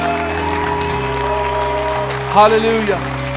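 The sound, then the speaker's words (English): A standing church audience gives Jesus a round of applause, clapping in a steady, continuous wash beneath sustained keyboard chords, with a voice briefly calling out with a rising and falling tone. “If you're thankful for it, I want you to stand on your feet, and I want you to give Jesus the biggest round of applause you've given him all day.”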